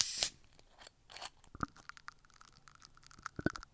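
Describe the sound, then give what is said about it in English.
A green soda-style bottle of energy drink labelled Attitude, Red Eye, being twisted open: a short, sharp hiss at the start, then a run of small plastic clicks and crackles. The sounds are fairly quiet, with no one talking. “Let's crack it open and give it a taste.”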